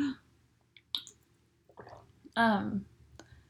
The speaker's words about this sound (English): throat is a little, I need some water. And I've only got coffee right here, so here we go. I'll drink the coffee.